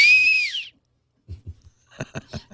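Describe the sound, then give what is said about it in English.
A person whistles a bird-like tweet, a bright, high-pitched note that bends upward then drops, sounding alone for under a second before a pause and some low, muffled bumps and voice-like sounds. “It's an analog tweet.”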